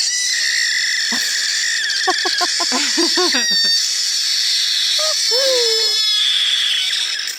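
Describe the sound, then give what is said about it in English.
A kitten lets out a string of shrill, raspy screeches in quick stuttering bursts, followed by a couple of longer wavering cries, all over a steady high-pitched hiss in the background. “So my can't even is a video of a kitten that has a bit of an unusual scream, we'll say.”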